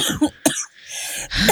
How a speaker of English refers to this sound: Oh, don't make me cough.